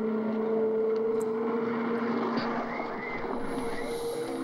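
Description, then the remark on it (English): A helicopter drones overhead with a steady, humming engine and rotor noise that holds at an even, moderately loud level throughout, with no voices. “That's some weird helicopter right there.”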